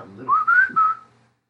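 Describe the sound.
A person whistles a short rising-then-level tune, three quick connected notes in about a second, heard clear with no talking over it.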